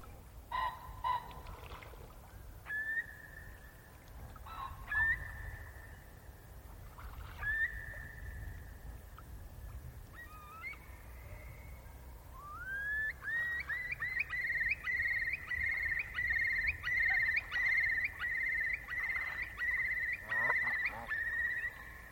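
A Eurasian curlew sings: several slow, rising whistled calls, then a loud, sustained bubbling trill of rapid repeated notes over a low outdoor rumble.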